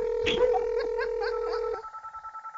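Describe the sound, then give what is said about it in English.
A steady telephone dial tone with a few quick chirpy blips over it as a call is placed to someone's mom, then it switches to a repeating pulsed ringing tone, fairly loud, with no talking. “Would somebody pick up the phone?”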